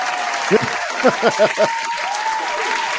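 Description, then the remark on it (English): Steady audience applause fills the whole stretch, a dense wash of clapping, with a few short voiced whoops or calls bursting through in the first half. “A little applause for you there.”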